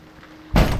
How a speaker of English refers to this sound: What was that? It's just the storm shutters. They've been doing that all night.